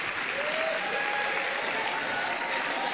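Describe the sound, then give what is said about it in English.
An audience claps for themselves for a few seconds, a dense, even wash of applause with no voices rising above it. “Clap for yourself.”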